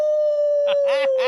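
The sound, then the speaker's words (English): A person imitates a howl: one long, steady sustained tone, with a few short harmonic-rich vocal bursts breaking over it toward the end. “That's some brilliant howling.”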